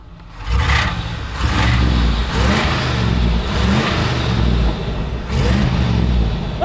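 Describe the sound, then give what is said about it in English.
A fuel-injected small-block V8 truck engine starts and roars, revving hard in repeated surges with a deep, rumbling low end and a brief dip between blips, loud and without any talking. “Isn't that small block come to life?”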